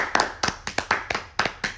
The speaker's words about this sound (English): Farewell, How to Get Away with Murder. You had a good run. Let's give it one last final clap.